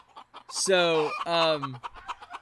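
A chicken clucks, giving two drawn-out, squawking calls in quick succession, loud and harmonic, followed by faint background murmuring.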